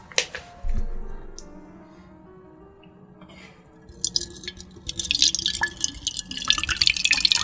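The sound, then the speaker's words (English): Water is poured into a can, beginning with a few scattered drips and building into a steady, splashing stream that grows louder and brighter over several seconds. “Pour it in this can.”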